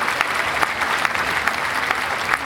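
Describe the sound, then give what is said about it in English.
A steady round of applause for the book The Boy Who Saw in Colors, dense overlapping clapping that stays at an even level throughout, with a few sharper claps standing out from the wash. “4.5 stars earns The Boy Who Saw in Colors a round of applause.”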